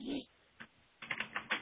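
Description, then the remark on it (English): Quick clicking keystrokes on a computer keyboard as someone types a message apologizing for technical difficulties, a single tap followed by a rapid burst of several, fairly quiet, after a brief vocal sound at the start. “Yeah, and I'm just typing in here that sorry for the technical difficulties.”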